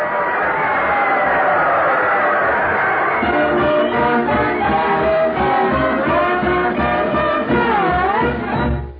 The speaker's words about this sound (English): The game is over, but that last play is canceled, and Riverdale wins 7-6. Oh, what a game, folks, what a game. Archie Andrews becomes the hero of the day. Listen to that crowd cheer.